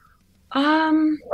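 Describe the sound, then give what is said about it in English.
A single loud, drawn-out dog bark, tonal and almost whine-like, lasting under a second before another sound cuts in at the end. “My dog's asleep in the hallway.”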